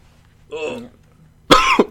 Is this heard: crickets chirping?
no